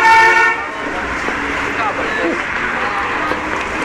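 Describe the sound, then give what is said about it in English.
A city bus passes close by on busy Robson Street, blowing pigeons about, opening with a short, loud horn toot that gives way to a steady, heavy roar of engine and traffic noise. “The bus about blew some pigeons into me.”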